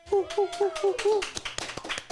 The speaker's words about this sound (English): Ah, the crowd goes wild.